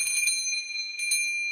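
A store door opens with a bell jingling: a low thump at the start, then bright, high ringing tones that linger, struck again a couple of times before fading. No voices.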